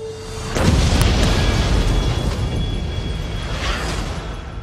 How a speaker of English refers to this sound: An explosion rocks the city today.